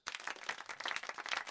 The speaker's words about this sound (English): No, don't clap at that.